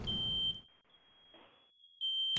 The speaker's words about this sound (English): Okay, Jesus Christ, I can't do the fire alarm anymore. Oh my God, I think I actually gave myself a headache.